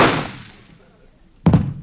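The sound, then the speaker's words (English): A sharp gunshot, fired while chasing someone on horseback, bursts out and rings away over about a second, followed by a second heavy, abrupt thud-like impact near the end. The shot hits the shooter's own horse. “I shot my own horse.”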